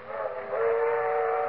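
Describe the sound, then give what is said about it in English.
A passing train sounds its whistle in one loud, sustained, reedy blast that swells partway through and holds steady, with a low rumble beneath and no voices. “They're traveling south by train this year.”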